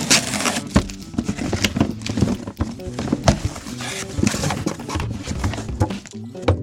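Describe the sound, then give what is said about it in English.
A cardboard box from KiwiCo is ripped open with bare hands, no scissors, in a run of rough, irregular tearing bursts and scrapes, with sharp louder rips scattered through a steady crackle and no talking. “I'm opening the box from KiwiCo. Didn't bring scissors, so bare hand in it.”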